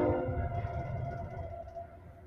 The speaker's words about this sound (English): Oh, here comes a train. I think this one's going northbound. Yep, there it is.